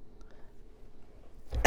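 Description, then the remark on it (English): Near-silent room tone, then a single abrupt, loud cough bursts in right at the end, from a speaker coughing during allergy season in Tennessee. “I'm coughing here, sorry.”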